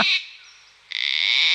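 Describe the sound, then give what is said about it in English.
A gang-gang cockatoo, the red-headed parrot that is the emblem of Canberra, gives a harsh, raspy creaking call: a brief grating burst, a short pause, then a longer, louder rasp that starts with a stuttering ratchet before holding steady. “It kind of has mossy red hair and it has a very raspy voice, like it's been out on the whiskies all night.”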